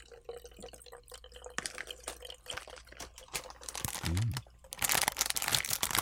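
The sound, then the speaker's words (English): Pickle juice being poured close up, a wet, trickling splash with crinkly bursts that swells into a steady, louder gush for the last second or so. No one speaks. “I have so much pickle juice that I also have to pour out.”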